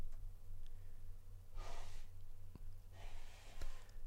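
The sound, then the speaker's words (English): Two thick, congested nose blows by a sick young child, each a rushing half-second burst about a second apart, fairly quiet, over a steady low background hum with no talking. “Just listening to him blow his nose, and it is so chunky.”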